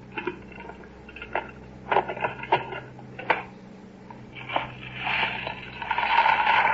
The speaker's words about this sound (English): Now what? Well, we put the lid on and you pour the ice in.